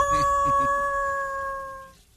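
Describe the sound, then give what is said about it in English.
A mother wolf howls in one long, steady, held note that holds its pitch for about two seconds before cutting off, with faint low murmuring beneath it at the start. “Wolf mother is out there.”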